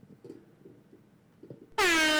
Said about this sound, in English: There's an air horn on there. Hit the air horn.